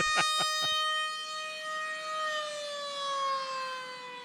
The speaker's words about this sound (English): Do like air horn noises.